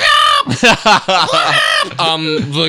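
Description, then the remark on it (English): A person loudly imitates a kookaburra call, mimicking it calling out the suburb name Wilston, with a run of rising and falling whooping, cackling bursts for a few seconds. “Oh, yeah, also, you don't like go to a suburb and see Kooparoos just being like, Wilston. They're like, Wilston!”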